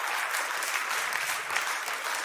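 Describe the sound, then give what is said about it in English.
A crowd applauds Jesus steadily, many hands clapping in a dense, even wash of bright noise that holds at a constant level throughout, with no voices standing out. “Come on, let's give Jesus a big clap.”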